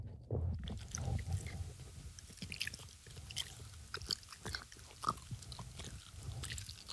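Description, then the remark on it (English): A dog chews steadily with wet, crunchy bites, a string of irregular clicks and smacks over a low rumbling mouth noise, fairly loud and continuous with no talking. “Guys, get ready for this dog ASMR.”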